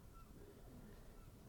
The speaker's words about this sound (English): Now there are so many pigeons above, and it's just this image from Jonas Mekas.